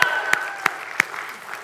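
audience cheering and applauding

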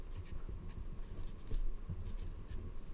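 pencils writing on paper

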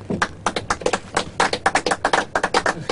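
applause

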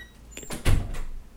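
door being shut

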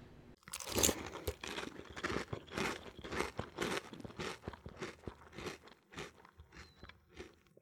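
crunchy chewing

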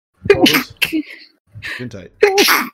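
a sneeze

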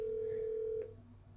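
telephone call ringing out

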